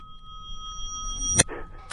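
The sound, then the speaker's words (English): A reversed bell: steady high ringing tones slowly swell louder and then stop in an abrupt, sharp cutoff, followed by a brief soft breathy noise. “Take the bell and set it in reverse.”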